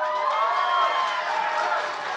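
A crowd applauds and cheers in a steady, loud wash of clapping with voices mixed in, sustained for a couple of seconds without letting up, from audience members who think Will Smith is the lead of Independence Day.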